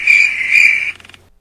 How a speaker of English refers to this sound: There's your crickets.